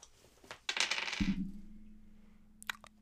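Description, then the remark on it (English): Dice clatter onto a hard surface in a quick, loud burst of rattling hits, then a low hum lingers while the rolling settles. A couple of faint clicks follow near the end. “All right, I'll get my dice.”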